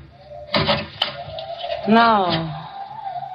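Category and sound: household object, closet door closing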